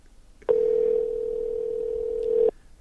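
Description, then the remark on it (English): A single steady electronic telephone tone rings out for about two seconds, clear and fairly loud, like a ringback heard through a handset while a call goes unanswered. No one speaks. “Now I'm calling somebody from my phone from 1814.”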